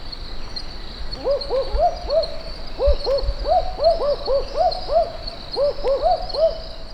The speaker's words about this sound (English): Here are some barking owls, Ninox connivens. I think you'll agree this species is well named. This was recorded in Queensland, Australia.